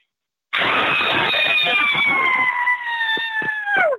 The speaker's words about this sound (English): Why don't you give us another scream and then hit us with your Halloween plans? Okay, here comes the scream.